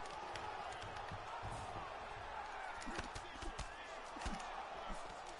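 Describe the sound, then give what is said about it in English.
A large crowd chants 'DC' steadily, a dense, continuous roar of many voices, with a few dull thuds and impacts breaking through now and then. “The crowd, once again, chanting DC.”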